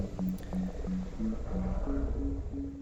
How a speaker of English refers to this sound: The pulses you're hearing right now are from a blue whale that Jeremy himself recorded.